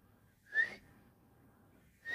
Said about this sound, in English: My whistle's a little weak.